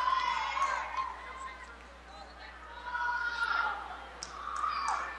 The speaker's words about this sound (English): Wow, good job by both teams. That takes a lot of physical effort. We're getting a good round of applause here by all the fans.